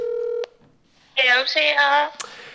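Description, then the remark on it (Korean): A steady electronic phone ringing tone from an outgoing call sounds for about half a second and cuts off abruptly; after a short pause, voices begin talking loudly. “우리 이거 벨소리만 나가.”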